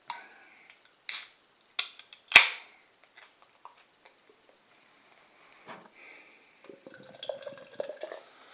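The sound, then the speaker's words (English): A few sharp cracks and a short hiss as a beer can is opened, then a soft gurgling pour of deep black beer into a Salopian brewery glass with light fizzing, forming a foamy tan head. Fairly quiet, with no talking. “So let's get this out into the glass and see what I think.”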